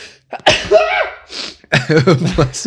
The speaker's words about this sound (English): Sneeze.